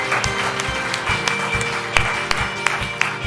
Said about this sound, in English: In Jesus' name, everyone said, give them a big hand clap of praise. We are proud, proud, proud of you.